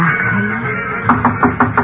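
Someone raps on a door five times in quick, even succession, the knocks firm over a steady low background hum.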